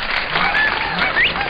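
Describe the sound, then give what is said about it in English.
A dense, steady wash of crowd applause fills the whole moment, loud and continuous, with a few rising whistles or cheers cutting through the clapping. “We've got to get a little bit of a quieter audience here. These guys are going wild.”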